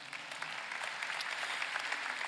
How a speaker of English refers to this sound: Aren't you grateful that the local church is the hope of the world and you're in a great one that's affecting all of this region? You can clap if you agree with that.